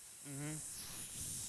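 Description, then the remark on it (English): A voice imitates the fizzing of a full beer can thrown into a fire: a steady breathy sizzle lasting about a second and a half, with a short voiced hum near the start. It is fairly quiet. “It made, like, a fizzing sound.”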